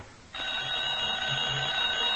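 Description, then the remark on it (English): A telephone bell in an antique shop, Basco's Antique Shop, starts abruptly after a brief quiet moment and rings steadily and loudly, a bright metallic jangle sustained to the end with no one speaking over it. “I'm better answer the phone.”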